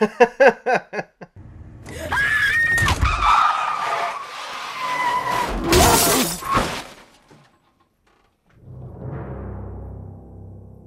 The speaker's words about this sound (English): A deer comes out of nowhere and just smashes through the windscreen.